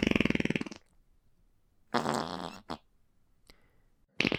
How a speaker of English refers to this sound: He's from an Earth where they speak in farts.